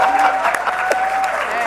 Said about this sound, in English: Uproarious applause.